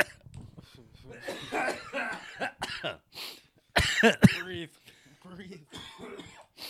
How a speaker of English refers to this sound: I've been waiting a year to cough into this microphone. Get it all out.